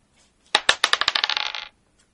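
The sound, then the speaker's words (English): Physical dice tumble across a hard table, a rapid series of clattering clicks that quicken and fade as they settle, with no one talking. “I'll just roll the dice.”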